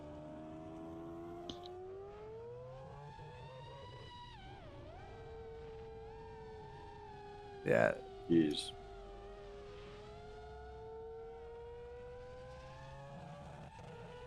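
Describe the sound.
A modified four-rotor race car engine, with the all-wheel-drive system the Hoonicorn had, runs continuously with a rich, buzzy drone as the car runs around Grid Life, its pitch climbing and dipping as it revs up and settles; a couple of short exclamations break in midway.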